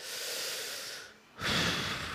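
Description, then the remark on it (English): A slow, deliberate deep breath as a breathing exercise: a long airy inhale, a short pause, then a louder, breathy exhale. No talking. “Practice breathing. Can we do that together?”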